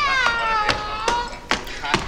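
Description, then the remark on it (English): A drawn-out, wavering cat yowl that sounds artificial, an imitation rather than a real cat, depicting a man assaulting a stray cat, punctuated by sharp thumps roughly every half second, loud throughout. “This is man assaulting stray cat. It's not even a real cat.”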